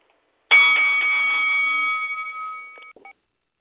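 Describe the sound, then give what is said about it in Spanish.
A single loud bell strike, like a boxing ring bell, signalling the first round of a tournament, rings out with a sustained metallic tone that fades over about two seconds, followed by a couple of faint clinks. No one speaks. “Ya tú sabes, sonido de la campana.”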